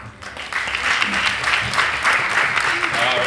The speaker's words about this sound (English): Now let's give another round of applause for our team.